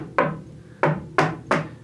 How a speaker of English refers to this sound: I had like a signature knock. Can I knock on the table? Please. Hold on. What was my knock, dude?